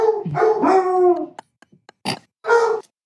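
A hound lets out a long, wavering howl, followed by a few scattered clicks and then two short, loud barks, with no talking.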